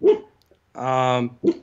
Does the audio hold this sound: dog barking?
yes